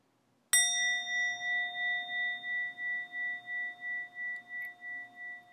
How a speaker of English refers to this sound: I'll begin with the sound of the bell.